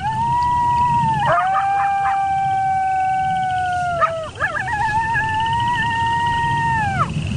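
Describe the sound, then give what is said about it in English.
Several coyotes howl together in long, wavering overlapping wails, with short yipping breaks partway through, heard steadily over a low background rumble. “Those are coyotes.”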